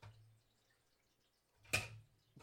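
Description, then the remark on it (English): Faint liquid trickles as it is poured, rising into one brief splashy burst near the end over a low steady hum, with no one talking. “Now I'm going to say I have to piss the entire time as I listen to the water trickle down.”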